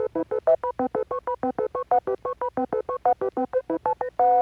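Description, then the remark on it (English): A rapid run of about twenty short electronic beep-boop tones, each a paired pitch like keypad dialing, pulsing at a steady quick rhythm before a final longer held tone, loud and alone. It introduces highlights from last week's Jeopardy games. “Cue the beep boops.”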